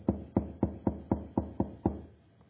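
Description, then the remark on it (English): Eight firm knocks on a door in a quick, steady rhythm, fairly loud, each with a dull wooden thud, then the knocking stops and it goes quiet. “somebody knocked at the door”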